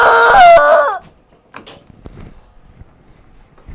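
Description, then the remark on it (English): A little chicken lets out one loud crow lasting about a second, followed by quiet, scattered knocks and clattering. No one speaks. “It gets on my nerves. This little chicken.”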